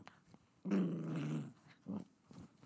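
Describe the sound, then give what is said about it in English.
A dog named Paprika growls, a sustained, rumbling growl lasting about a second followed by a brief, quieter grumble, with no one speaking. “That was very insightful feedback from Paprika, my dog.”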